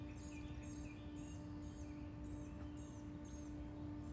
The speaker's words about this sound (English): Friday, June 9th, and I'm in Northwest Alabama, getting the bird song.